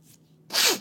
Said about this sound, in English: Sniffles.